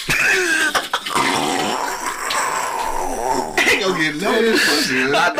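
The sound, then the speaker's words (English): A harsh, raspy fit of coughing from smoking weed, several rough hacks and throat-clearing sounds running together, with voices talking and reacting over it. “You for sure ain't getting that with that cough you got.”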